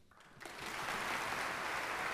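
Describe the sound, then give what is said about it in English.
A concert audience breaks into applause for violinist Pekka Kuusisto as he joins Esa-Pekka Salonen and members of the San Francisco Symphony for the U.S. premiere of Bryce Dessner's Violin Concerto, the dense clapping swelling quickly after a brief quiet start and then holding steady and loud with no voices over it. “And now you hear the applause for violinist Pekka Kuusisto as he joins Esa-Pekka Salonen and members of the San Francisco Symphony to play the U.S.”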